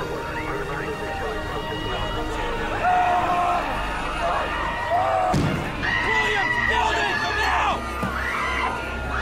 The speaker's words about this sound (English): There's some really good sound design of like bystanders screaming. And I think you can hear a little thud too. It's really well done.